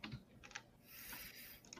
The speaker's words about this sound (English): To stop all the furious typing, I had to mute my mic.